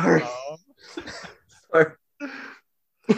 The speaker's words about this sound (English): Sorry. I got a cough and that the intersection of that. Sorry.